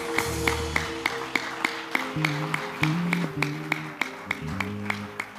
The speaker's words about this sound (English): Give the Lord a clap of praise, someone. I can't feel the clap.